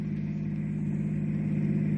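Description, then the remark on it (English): A car engine hums with a low, steady rumble and a droning pitch, holding at an even loudness throughout, with no voices over it, as the car approaches during a staged reenactment of a road accident. “Be ready to push that stuffed dummy in front of the car when I give you the word. Hot Rod almost here.”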